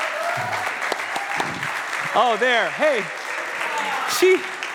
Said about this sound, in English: But can we just give a big round of applause?